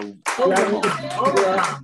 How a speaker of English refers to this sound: Can we just clap for her and love her? Yeah. Woo!